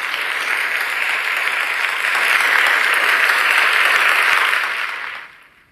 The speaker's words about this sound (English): And without further ado, you know how I like to get down and operate. Let's go ahead and give ourselves a round of applause.